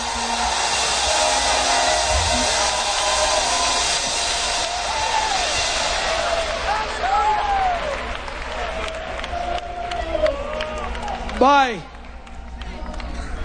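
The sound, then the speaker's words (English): A church audience claps and shouts to the name of Jesus in a dense, steady roar that thins after a few seconds, leaving scattered whoops and rising cries, including one loud swooping shout near the end. “Oh, shout yes, everybody in the building. Shout to the name of Jesus. Clap your hands and pray in the Holy Ghost.”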